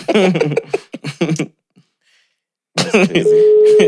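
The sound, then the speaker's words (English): A steady electronic telephone ring tone as a call is placed starts near the end and holds continuously under people talking, following a brief pause in the conversation. “pick up the phone, man.”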